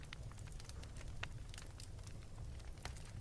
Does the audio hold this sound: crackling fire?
yes